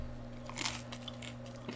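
A single crisp bite into the crunchy crust of a store-bought Walmart pizza, with a sharp crackling crunch followed by a softer chewing crackle against a low steady background hum.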